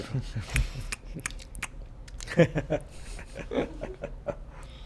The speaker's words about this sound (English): Nathaniel requested a slurp, so let's just give Nathaniel.